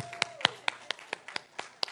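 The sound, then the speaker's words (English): One person, the speaker, clapping for himself alone, about nine sharp, crisp claps in a quick, steady rhythm over two seconds, at moderate volume with no talking. “I'll clap for myself right there.”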